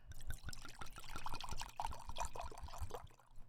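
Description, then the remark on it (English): Wine pours into a glass in a steady stream of rapid, rhythmic glugs and splashes lasting a few seconds, with no talking. “Pour the wine.”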